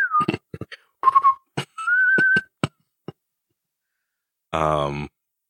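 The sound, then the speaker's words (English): A short whistled signal: three clear notes, the last held longest, mixed with sharp clicks and taps, followed by a brief voiced sound like a sigh near the end. “Because you'd think like your little whistle signal would trigger them.”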